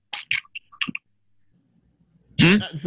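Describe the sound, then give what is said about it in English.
A handful of short, wet clicking mouth noises from someone chewing, irregular and fairly loud, followed by a pause and then a voice starting up at the end. “You're chewing.”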